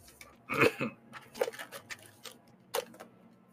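A harsh cough bursts out near the start, followed by a few softer, scattered coughing sounds and one more sharp hack toward the end, with no talking.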